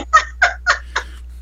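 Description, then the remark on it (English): A person imitates a chicken live while flapping their arms like wings, with four quick, evenly spaced clucks, each a short nasal burst, fairly loud, with no other talk around them. “I can't believe I am actually flapping my chicken wings and doing my chicken voice live.”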